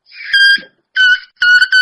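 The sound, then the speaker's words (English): A bagpipe chanter reed buzzes in three loud, high-pitched bursts, each a bright, reedy drone with a steady pitch, separated by short silences and with no talking over it. “Now I get that nice buzzy sound.”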